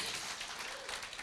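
A crowd applauds steadily for a speaker about to share the first session of an event, many hands clapping together in a dense, continuous wash of sound with no voices standing out. It is moderately quiet and even throughout.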